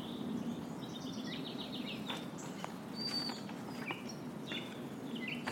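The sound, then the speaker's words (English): Several birds chirp and trill in quick, overlapping calls over a steady outdoor hum, some notes bright, others softer, with no voices. “Birds chirping, bees buzzing.”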